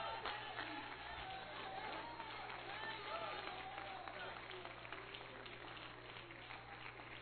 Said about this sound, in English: The Bible says clap for joy, not because you have joy. I'm going to clap for joy. And if you don't have joy, the best thing that you can do is stand up and begin to clap your hands.